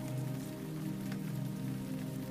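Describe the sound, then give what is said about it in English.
Steady rain pattering against window glass in a staccato patter, a dense, continuous tapping of many small drops with a soft low hum beneath, even throughout with no voices. “Rain begins to fall and taps against the windows in a staccato patter.”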